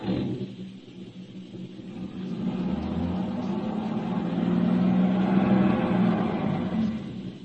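A car engine revs and strains in a steady, heavy rumble as the driver tries to get the car out of a ditch it is stuck in, swelling louder about two-thirds through before easing slightly, with no one speaking over it.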